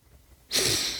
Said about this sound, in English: Breathing in and then letting it all out, right? I tried to do it just then, but my nose is a little congested, so sorry.